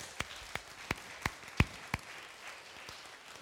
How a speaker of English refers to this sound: Can we give these guys a round of applause for everybody?